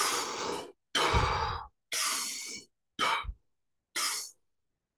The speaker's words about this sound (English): my breath practice would involve about 10 minutes of what I called cowbunga breathing. This was my pre-Wim Hof era creation. The breath goes like this.